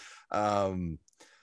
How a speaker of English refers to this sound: Breathing into the mic heavily, it's always good.